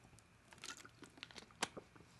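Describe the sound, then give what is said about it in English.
Someone takes a quick sip of water: soft wet mouth clicks and a faint crinkle of a bottle, with one sharper click near the end, no talking. “but a little sip of water here.”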